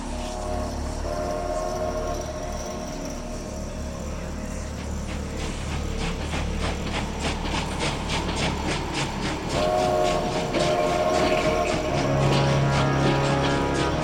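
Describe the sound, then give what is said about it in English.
A train rumbles past with a steady clickety-clack of wheels on rails, while a sustained horn-like tone swells louder toward the end. No voices are heard. “Welcome to the Midnight Train.”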